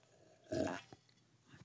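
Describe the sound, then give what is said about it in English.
A single short slurping sip of very hot coffee from a freshly made pot, followed by a faint swallow and quiet mouth sounds, with no talking. “Ooh, sip of the day. There it is, right there.”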